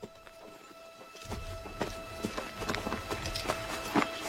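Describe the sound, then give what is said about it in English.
Hooves thud and clatter in an irregular, hurried rhythm as a general rides his horse forward toward Federal troops after a failed attack, over a steady low rumble and faint background hum. “He rode forward, intending to not let the Federals advance if they dared, as his now defeated boys made their way back to the lines, limping and bleeding.”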